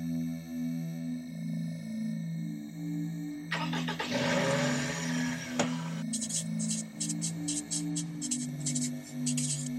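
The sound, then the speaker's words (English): A car engine cranks and roars to life in a loud, rough burst, then settles into a running drone, with a steady low humming tone and bright repeating chirps in the background; from the internet series This Car Survived Kelly Square, set in Worcester, Massachusetts. “which is this car survived Kelly Square.”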